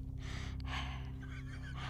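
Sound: imitated heavy asthmatic breathing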